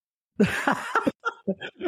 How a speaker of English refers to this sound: Oh, that was perfect cough, by the way. He sounded like old man on that cough.